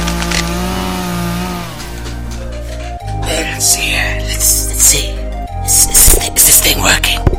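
A loud chainsaw engine drones steadily, then revs up in a couple of surges, its harsh buzzing growl rising and roaring louder toward the end.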